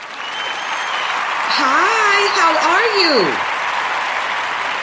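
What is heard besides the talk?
applause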